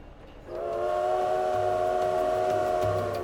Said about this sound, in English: Wellington train station is packed. Everyone there is trying to get home to family in time for Christmas.